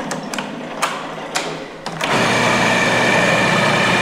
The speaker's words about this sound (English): So just a little sprinkle of cayenne in there. Okay. And then food processor.